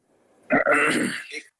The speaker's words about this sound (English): All right, he's not ready. We'll get him out of there. I don't know what, he's clearing his throat on the line. He's all, what are you doing, man? Are you ready or not, man?